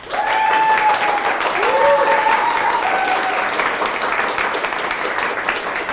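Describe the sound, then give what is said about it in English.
A crowd claps steadily for several seconds, a dense, even wash of applause, with a few whoops and cheers rising briefly over it. “Let's applaud for her.”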